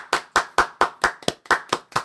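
Hands clap in a quick, steady rhythm, about nine sharp, crisp claps over two seconds, fairly loud and evenly spaced, with no voices.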